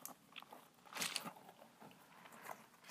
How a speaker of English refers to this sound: Okay, yeah. It does pick up the gross sounds of the squish foam.